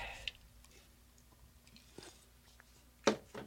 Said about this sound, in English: All right, well, excuse me. Sorry about that. I was slurping, didn't mean to. I drank it too fast. My Dr. Pepper, I drank it too fast, and it's kind of bubbling, and I was like, ooh, yeah.